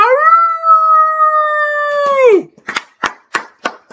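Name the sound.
wolf howl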